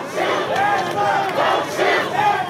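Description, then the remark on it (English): A large crowd of protesters on Colfax Avenue in Denver chants "Hands up, don't shoot" in unison in front of a line of Denver police officers, loud and sustained, with rhythmic swells of many overlapping voices rising and falling every half second or so. “Video shows them chanting, "Hands up, don't shoot," right in front of a line of Denver police officers.”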